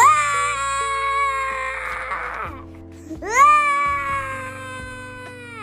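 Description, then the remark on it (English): In a Christmas story, a voice acts out a screaming latke (potato pancake) slopped into a pan of very hot olive oil, with two long, loud, high-pitched wails, the second swooping sharply upward after a brief pause, with nothing else underneath. “Once these ingredients were properly mixed, the latke was slopped onto a pan of olive oil into a very high temperature. And this when it began to scream.”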